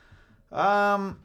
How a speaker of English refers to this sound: Let me clear my throat.